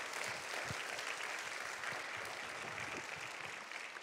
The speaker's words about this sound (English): Would you give them a round of applause to say thank you for what you do?